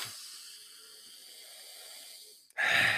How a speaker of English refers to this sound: And take a deep fucking breath, because that felt good.